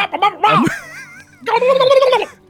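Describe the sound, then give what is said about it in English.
A person imitates a turkey gobble with a rapid, warbling vocal burst, pauses briefly, then lets out a second longer, wobbling gobble-like call, loud. “I'm an eagle that wants to be a turkey.”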